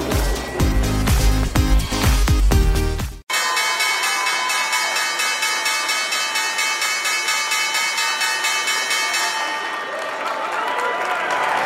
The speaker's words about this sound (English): Welcome back to First Move, live from the New York Stock Exchange. A vigorous ringing of the opening bell from members of the U.S. Armed Forces.